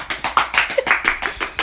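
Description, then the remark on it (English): A quick run of sharp hand claps, about nine bright, snappy hits in steady succession, each with a crisp high-pitched crack and short decay, heard on their own without talking. “She's got a hand clap here. Hand clap.”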